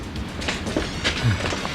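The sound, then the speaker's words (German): A suburban S-Bahn train rumbles steadily at the Wilhelminenstraße station platform at 8 pm on New Year's Eve, a continuous mid-loud roar with faint metallic clatter and brief squeaks from the wheels, no voices present. “S-Bahn-Haltestelle Wilhelminenstraße, 20 Uhr.”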